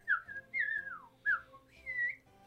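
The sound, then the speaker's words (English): A person whistles a short birdlike call imitating a little bird that jumps onto someone's head: four quick chirping phrases, bright and fairly high, some sliding downward, others rising, with brief gaps between and no talking. “And one of the little birds just jumps back on your head and goes.”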